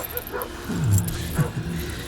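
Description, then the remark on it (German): Dogs make a couple of short, low whining yelps as they run to something thrown over a fence, amid steady rustling background noise and a faint metallic jangle, with muffled voices in the background. “Sie haben was über den Zaun geworfen. Die Hunde rennen hin.”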